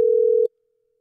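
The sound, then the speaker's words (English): A steady, low electronic telephone tone hums clearly on the line for about half a second, then cuts off abruptly into near silence. No one speaks. “I think they're curious, just as we are, as to whether or not someone's going to pick up.”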